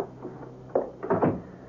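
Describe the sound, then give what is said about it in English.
An apartment door swings shut with a soft thud, followed a moment later by a brief clattering latch sound, all fairly quiet with no voices. “Come on in, Clark, and close the door.”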